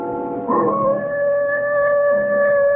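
A wolf lets out one long, steady howl at night that swells in after a brief rise and holds a sustained, mournful pitch, fairly loud, with no voices present.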